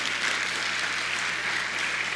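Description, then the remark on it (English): A crowd at Valley Christian Church on a Thursday night breaks into steady applause, a dense, even wash of many hands clapping at once with no pauses, holding at a fairly loud level throughout, clapping because 154 people have received Jesus Christ since January 1st. “Now, I know it's Thursday night, but I think we ought to clap about that because that's just crazy.”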